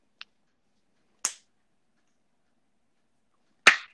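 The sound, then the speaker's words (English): Three sharp, crisp hand claps at uneven intervals, the first softer and shorter, the last the loudest, each separated by silence with no talking. “I don't know why I just clapped, but.”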